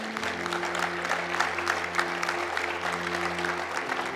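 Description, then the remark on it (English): An audience claps steadily, a dense wash of many hands applauding together at a fairly loud level, with a low sustained tone humming underneath throughout. “Give those people a great big hand clap.”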